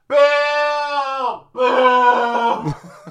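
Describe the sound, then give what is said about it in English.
Two long, full-throated screams ring out loud, the first steady and sustained, the second rougher and wavering before it breaks off abruptly. “It's like screaming at the top of my lungs.”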